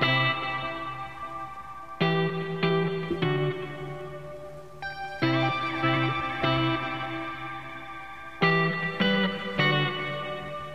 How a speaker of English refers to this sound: But this song right here, I like it, and it's not country, but tell me what you think.